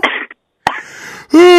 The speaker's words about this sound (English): Like, how many times can you... Do you have to yawn every time I see you?